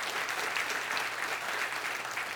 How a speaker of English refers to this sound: We have young people. Come on, give them a really good hand of applause this morning. Amen. Hallelujah.